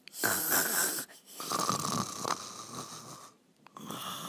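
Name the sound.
voice imitating snoring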